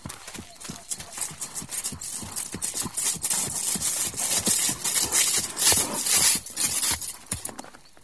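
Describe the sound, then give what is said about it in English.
Horse hooves of an approaching rider clip-clop in a steady, quick rhythm of many sharp knocks, growing louder over several seconds with a bright, noisy hiss above them. “Lord Stephen, a rider is approaching.”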